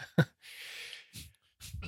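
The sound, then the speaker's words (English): A person sniffs: a short breathy catch followed by a longer, airy inhale through the nose, then a few softer breath noises. No talking, fairly quiet. “you were just sniffing.”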